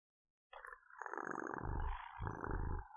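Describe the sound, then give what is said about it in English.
A male cat purrs loudly with a deep, rough, growly rumble, rising in two long swells after a brief silence, as he flops down at someone's feet, rolls onto his side and has his belly scratched. No one speaks. “The cat just rubbed against my leg and flopped down at my feet, rolling onto his side and purring loudly.”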